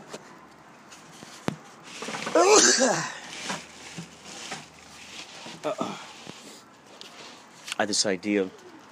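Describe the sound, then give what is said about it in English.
Pigeons coo in a few soft, rolling bursts, one around the middle and another near the end, over a steady low background hiss with faint murmuring, outdoors in nature on a dreary day. “Looking at these birds.”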